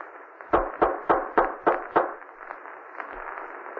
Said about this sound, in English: I better knock again.